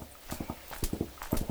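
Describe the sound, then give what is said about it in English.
Horse hooves clip-clop in quick, repeating groups of three as a horse is ridden across Tobago, a steady galloping rhythm, clear, with no voices over it. “He rode a horse to the other side of Tobago from the port”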